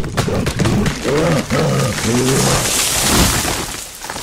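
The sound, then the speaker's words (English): A deep, growling creature roar rises in a few surging bursts over a rumbling, noisy background, loud, then trails off into a low murmur. “And then all of a sudden, there's a roar, steps coming faster, and then something knocks into him and throws him against a tree.”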